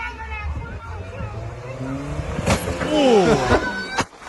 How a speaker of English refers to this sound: Oh! The kids take off in the car.